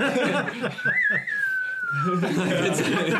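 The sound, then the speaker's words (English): A person whistles a long, wavering note that rises slightly, then glides slowly downward, sounding like a Western-style melody, while voices chatter and chuckle underneath. “you guys hear the whistle?”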